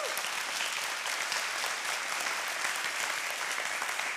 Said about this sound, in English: I assume that's for her. Those of you who know me are applauding for her. She's a saint.